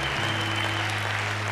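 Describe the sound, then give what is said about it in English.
A church audience clapping and applauding steadily, dense and continuous across the whole moment, with a low hum sustained underneath and no voices standing out. “I want everyone to give a big clap for them, please.”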